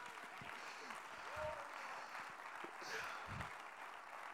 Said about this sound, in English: Oh, come on, clap your hands unto the Lord right now.